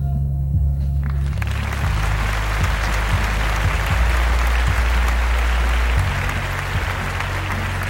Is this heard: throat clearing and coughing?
no